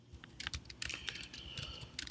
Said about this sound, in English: doesn't like it when you do the clicking sounds. I had to type something in.